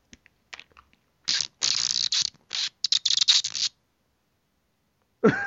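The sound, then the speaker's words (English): A voice imitates a squirrel's chatter with the mouth, while holding a watermelon Jolly Rancher candy in the mouth: rapid, dry clicking in several loud bursts that sound almost mechanical, like a ratchet. A brief vocal sound follows after a pause. “Did you do that with your mouth?”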